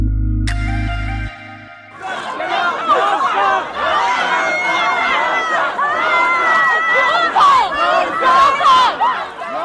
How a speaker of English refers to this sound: Those are chants and yelling that you're hearing from a Richmond council meeting last night. Now, generally, in quiet, leafy suburban Richmond, council meetings are much more professional, and you don't hear that kind of emotion.